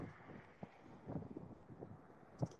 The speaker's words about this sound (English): It is freaking freezing up here. Windy as fuck.